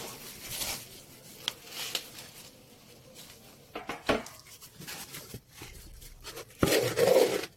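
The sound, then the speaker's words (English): Scraping and gritty rustling as Yoro garri, mixed with palm oil, is stirred while frying in a frying pan, coming in irregular strokes and soft clinks, with a louder burst of scraping toward the end. No talking. “So here is the garri, we are frying it.”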